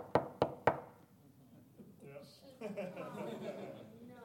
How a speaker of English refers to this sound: This knock on wood.